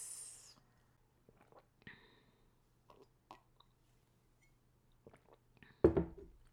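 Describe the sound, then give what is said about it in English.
Someone takes a sip of tea: a few soft mouth and cup noises, then one loud, brief slurp near the end. “And now, let's take a sip of tea to that.”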